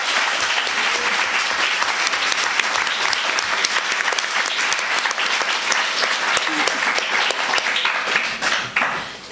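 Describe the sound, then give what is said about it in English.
A crowd breaks into sustained, loud applause for the guests, a dense wash of many hands clapping steadily for several seconds before it begins to thin out at the very end. “We have a big round of applause for our amazing guests.”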